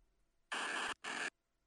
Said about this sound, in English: Here's the Voltorb cry